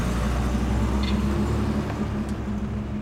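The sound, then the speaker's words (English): A car is driven home carefully along a road, its low engine drone and road rumble holding an even, continuous level throughout, with no voices. “Tui drives home as carefully as he can.”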